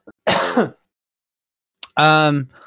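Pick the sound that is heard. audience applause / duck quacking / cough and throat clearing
cough and throat clearing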